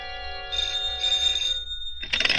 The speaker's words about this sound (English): At 8, my phone rang.